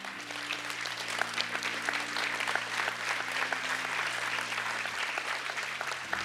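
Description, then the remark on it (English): A crowd applauds steadily for several seconds to celebrate what Jesus is doing in someone's life, dense overlapping claps over a low sustained organ-like tone that shifts pitch near the end. “listen, everybody's clapping because they've all done the same thing.”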